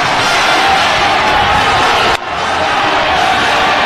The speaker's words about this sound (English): And there's the ball game. The Huskers win it. Final score in overtime. Nebraska 80, Wisconsin 72. And another court storming. Storm that court. Just storm that puppy.